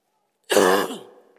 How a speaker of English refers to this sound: Sorry about the cough.